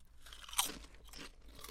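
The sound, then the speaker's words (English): A single sharp, bright crunch as someone bites into a crisp spiced ketchup-flavored chip, followed by softer crackly chewing sounds over a quiet background with no talking. “Let's do a chip cheers.”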